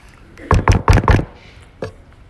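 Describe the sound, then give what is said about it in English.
Four firm knocks on a door in a quick, even rhythm, followed after a short pause by one softer knock. No voices. “He takes this sin, makes himself look like a hero until there's a knock at the door.”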